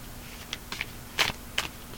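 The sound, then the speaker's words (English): A deck of tarot cards being shuffled: a few short, crisp papery bursts spaced irregularly over two seconds, fairly quiet, with no talking. “We're gonna shuffle a little bit more.”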